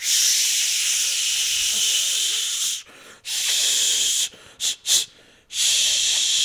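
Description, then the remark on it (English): A voice imitates someone applying Axe body spray with long, steady hissing bursts: a sustained hiss, a short pause, another long hiss, then a few quick spurts before one final long spray. “Well, and I agree with that because it seems like the people who choose to use Axe body spray, they use so much and the product itself is just like so in your face.”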